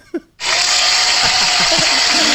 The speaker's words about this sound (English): it's an applause. It's the applause.